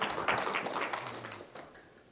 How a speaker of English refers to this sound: I didn't think I was going to get any claps for that,